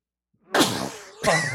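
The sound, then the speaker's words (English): A loud, sudden sneeze bursts out, breathy and partly voiced, followed a moment later by a second sharp burst of the same kind. No one talks. “I'm sorry, that wasn't a rifle shot. That was me sneezing.”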